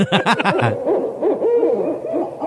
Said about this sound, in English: Is it an owl? That's yes. what I thought too. It's okay. an owl. It is an owl. Okay, that's what I thought it's too. It's the barred owl, and God help me if they're in the rainforest, because and I told you guys that they are.